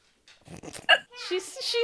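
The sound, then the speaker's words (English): A dog shut behind a door gives a sharp yelp, then a run of high, wavering whines, with muffled rustling just before. “She shuts it with a dog inside.”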